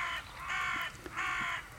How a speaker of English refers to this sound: Listen to these crows. I know. I've not seen any scarecrows. I've seen a lot of crows eating